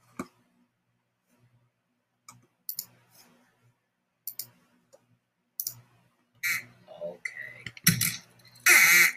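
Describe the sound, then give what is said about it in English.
A few sharp clicks and ticks, then a run of loud, buzzy, nasal quacking blasts from a duck call being tested by a duck call tester, growing longer and more insistent toward the end. “Duck call after duck call undergoes Cuthbert's”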